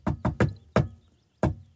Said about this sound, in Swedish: Den universella hemliga knackkoden knack, kna, kna, kna, knack, knack, knack.